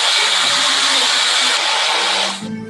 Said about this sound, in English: Now that you're done chopping, place the ingredients into the blender and liquefy. So now the guy's putting the banana in the blender.